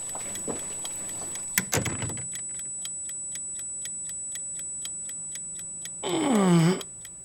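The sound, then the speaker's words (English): A bomb timer, set to one minute, ticks rapidly and evenly, about five crisp clicks per second, after a couple of heavy clunks, then ends with a loud, harmonic tone that sweeps downward. “Set the timer to 1 minute.”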